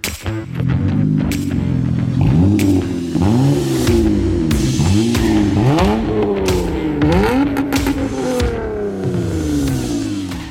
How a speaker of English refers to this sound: That is Eric's 2004 Honda Accord from the Automotive ADHD Car Sound Archive.